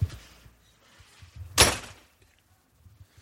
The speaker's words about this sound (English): Uh-oh, there's a knock on the door here. Yeah, hold on, this doesn't happen very often.